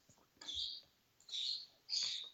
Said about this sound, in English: Birds. Oh, yeah. That's what that is.